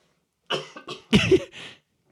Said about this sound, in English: I'll tell you what I did find interesting, or not interesting, and I'm going to get serious now and I'm going to cough before I do.